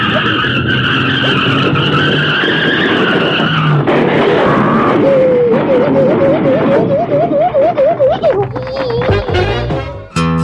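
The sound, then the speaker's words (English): Car tires screech loudly and at length as the car skids toward a truck, a sustained high squeal that shifts and wavers in pitch, with engine noise underneath, cutting off abruptly at the end. “We're gonna crash into that truck!”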